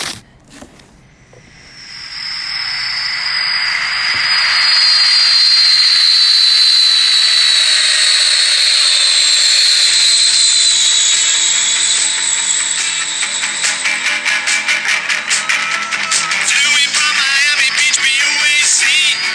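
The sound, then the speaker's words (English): A jet plane, a BOAC flight from Miami Beach, roars loud, its high engine whine slowly sliding downward as it passes over and lands somewhere in Russia, with a steady roar that grows rougher and pulsing toward the end. “So we heard a plane, right, in the beginning. That's the plane landing.”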